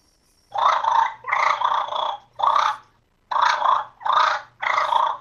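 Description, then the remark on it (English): A person imitates a fighting purr with a rolled tongue and cheeks inflated with air: six rough, rolling growl bursts, each about half a second long, in two groups of three separated by a brief pause, loud and harsh with no talking. “From then, you can start doing fighting purrs just to get the sound right.”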